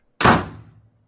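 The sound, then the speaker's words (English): A single door slams shut with a loud, sharp bang, followed by a short rumbling resonance that quickly dies away. Nothing else is heard and no one speaks. “Quick! Shut the door! Lock it!”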